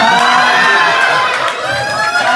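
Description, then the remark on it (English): A crowd cheers and shouts loudly and continuously, with high excited voices layered into a dense wall of sound, likely mixed with clapping throughout. “I literally heard like people applauding.”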